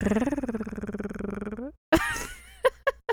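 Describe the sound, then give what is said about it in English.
A person imitates a cat purring with a steady, rapidly pulsing voiced rumble for under two seconds, then a breathy burst and a few short vocal chirps follow. “I'll even purr if you want.”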